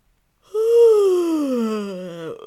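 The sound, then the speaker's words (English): A single long, loud yawn while stretching as a singing warm-up, with a voiced, falling pitch that slides downward over about two seconds, ending in a brief creaky rasp, with no talking. “So let's start with a good yawn stretch.”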